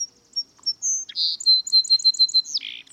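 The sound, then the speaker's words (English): A song sparrow sings alone, clear: a few bright opening notes, a buzzy burst, then a rapid trill of evenly repeated chips ending in a harsh buzz. “The Song Sparrow, a humble little bird with a big role in history.”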